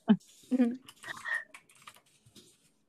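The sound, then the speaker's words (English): Brief bursts of computer keyboard typing, quick uneven clicks, mixed with indistinct voices and vocal sounds in the background. “Oh, do you hear the typing, guys?”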